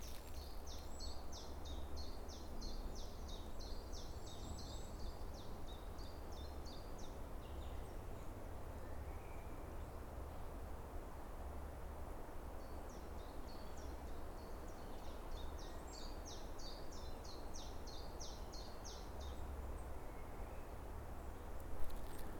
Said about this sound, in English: those really wet, higher woodlands that were plantations that have been left to kind of grow out. And they're often covered in moss and lichen and algae, and there's loads of fungi around. You can just about hear the wind moving through them as well.